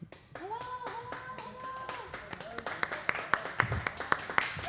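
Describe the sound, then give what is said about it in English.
A small group claps unevenly while a few voices whoop and cheer, the scattered hand claps growing sharper and louder toward the end. “But if you don't believe us, cheer up, people.”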